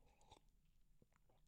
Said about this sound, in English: Let me take a sip.